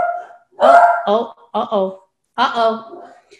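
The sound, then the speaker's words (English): A small dog yaps several times in short, high-pitched bursts, fairly loud, with brief irregular pauses between the barks. “I'm not sure what little dog's problem is.”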